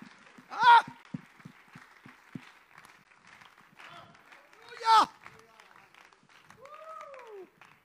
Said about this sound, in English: In Jesus' name we pray. Could we just clap our hands together and agree in this prayer?